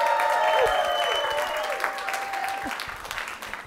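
Sustained audience applause at a live music show, a dense crackle of many hands clapping at once, loud at first and slowly tapering off, with a few whoops and cheers mixed in.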